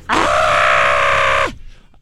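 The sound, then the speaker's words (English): A voice imitates the weird scream of a young singer heard at a concert: one loud, strained, raspy cry held steady for about a second and a half, then dropping off abruptly. No talking accompanies it. “But like I said, he does this weird screaming thing that... How is it again?”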